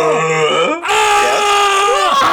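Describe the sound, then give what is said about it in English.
A person vocally imitates the classic Godzilla roar: a loud, strained, drawn-out cry in two parts, rising from a low groan into a harsh, screeching wail with a brief break between. “We all know the classic Godzilla roar, right? It's like the...”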